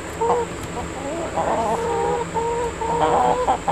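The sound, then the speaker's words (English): Several chickens in a garden chicken coop cluck and murmur in a steady, overlapping chatter, with short rising and falling calls over a faint constant background hum. “And there's a chicken coop.”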